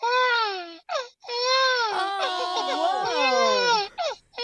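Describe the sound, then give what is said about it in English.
A voice imitates a baby crying, starting from a hum and then opening the mouth and going high, with long, wavering high-pitched wails broken by short gasping pauses, the pitch sliding up and down in sobbing waves. “Now you can use that for a baby cry.”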